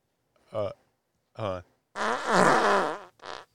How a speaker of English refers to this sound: Oh man, you're picking that stuff off the floor at that point. That felt like that was like a fart going down a ski slope.